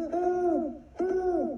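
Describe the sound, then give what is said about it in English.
A man's voice imitates a spotted owl to try to call it down on forested timber land. He gives two drawn-out, wavering hoots in quick succession, each falling off at the end. Fairly loud, with no other talking. “is trying to call it down.”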